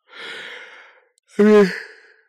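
A single loud yawn: a long airy intake of breath, a short pause, then a voiced, groaning release that trails off into a breathy exhale. No one speaks.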